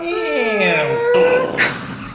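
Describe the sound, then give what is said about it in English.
A voice imitates a heavy vault door closing: a drawn-out, creaky groan whose pitch slides and wavers for about two seconds, ending in a short breathy hiss. “Can we have the sound of a vault closing”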